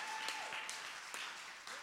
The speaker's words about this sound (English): Clap your hands if you believe what I'm preaching.